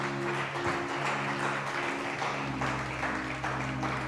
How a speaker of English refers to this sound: Give God one more hand clap.